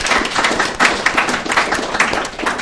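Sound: audience round of applause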